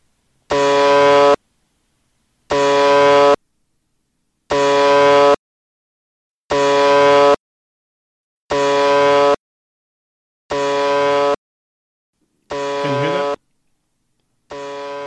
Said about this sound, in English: UVB76, also known as the buzzer. That's the nickname for this number station.